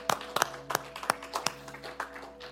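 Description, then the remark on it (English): A church group claps for the Lord in quick, uneven bursts, roughly a dozen sharp slaps overlapping over a couple of seconds, with a steady low hum underneath and no one speaking. “Let's give a clap to the Lord.”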